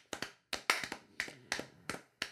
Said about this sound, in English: Give the all those guys Falcons are great. A round of applause.